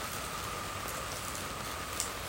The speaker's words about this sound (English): Something quite strange about being stood in a tent with the rain hitting you, the roof above you, and then watering inside it with the hosepipe. A little bit perverse.